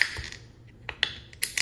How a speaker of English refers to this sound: We're gonna pour these out into our fancy glasses and get that tasting ready. So let your bottles pop.